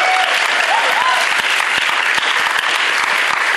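A church audience breaks into loud, sustained applause for the organizers of a food collection, dense clapping continuing steadily for several seconds, with a faint whistle or cheer rising briefly near the start.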